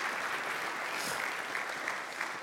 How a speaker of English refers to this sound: Would you guys give her another round of applause?